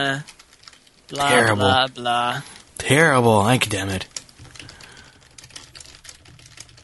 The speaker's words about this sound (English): Sorry, typing some stuff here. Getting ready for our next segment.